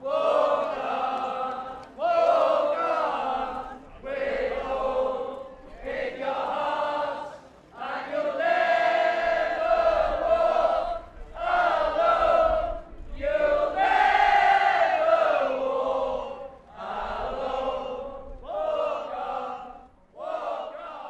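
A large crowd sings a football anthem together outdoors, loud sustained voices carrying a slow melody in long phrases with short breaths between lines and no one speaking over it.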